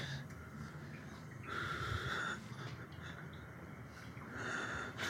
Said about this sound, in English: Why that motherfucker breathing like that though? Yo, cause he's fucking scared.